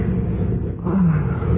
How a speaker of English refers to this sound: Oh, started to thunder.